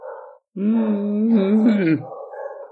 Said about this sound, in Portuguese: E aí, em momentos assim, esse cachorro vai começar a latir de novo. Por favor, não começa a latir, eu não te aguento mais, cachorro.